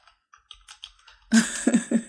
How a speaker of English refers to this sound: So, what are your movie recommendations? Mine are... I'm typing them now.